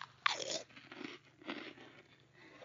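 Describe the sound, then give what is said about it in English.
A crunchy 7-Eleven biscuit is bitten with a sharp snap, followed by several rhythmic crunching chews at a moderate level, recorded on a phone, with no talking. “I'm going to eat one biscuit here.”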